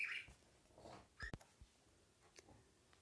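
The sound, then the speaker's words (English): A bird clock chimes softly: a couple of brief, high chirping calls spaced apart, faint, with no one speaking. “The bird clock again.”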